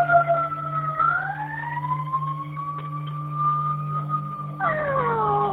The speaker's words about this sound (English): We got to get the ambulance to help Mommy, okay? Okay, see the ambulance?